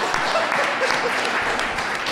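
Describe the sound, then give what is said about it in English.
A crowd applauds answers steadily, a dense crackle of many hands clapping at once that stays at an even, fairly loud level throughout, with no voices standing out. “No one's ever there applauding answers.”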